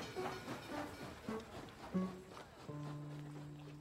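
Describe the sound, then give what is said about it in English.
A train from Buffalo to New York rumbles along its rails with irregular clanks and thumps, then settles into a steady, droning hum at moderate volume. “There, she boarded a train to New York with $50 sewn into her underwear.”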